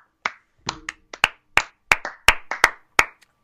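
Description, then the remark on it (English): A short burst of applause from what sounds like a single pair of hands, greeting news of a new front office and a new head coach replacing Jim Boylan: about a dozen sharp, crisp claps at a quick, slightly uneven pace, with no voices. “So let's get a round of applause for that.”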